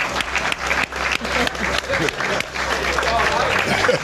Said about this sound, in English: Let's clap it up for me. Thanks, guys.